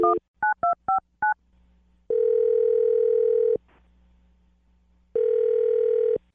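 A quick run of six touch-tone dialing beeps, followed by two long, steady ringback tones separated by a pause, heard clearly over a faint line hum with no one talking.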